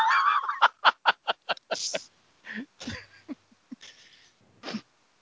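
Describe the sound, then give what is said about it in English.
A rapid string of about eight harsh, honking calls from birds wheeling high overhead rings out, followed by scattered squawks and cackles with short gaps between them, loud, with no one talking. “Some birds wheeling high above them are all, "Ha ha, we're making noise."”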